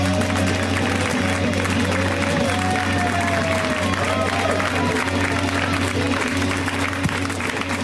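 An audience breaks into a steady round of applause, dense overlapping clapping that holds at an even level for about eight seconds, with a faint low hum underneath and no one speaking.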